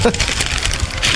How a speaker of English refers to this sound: Watch this, though. I'll shuffle through some papers and pretend that I have stuff written down.